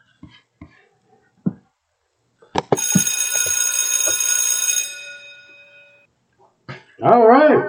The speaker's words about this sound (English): All right, it's that time. We're going to give the bell. It's the time for our chat.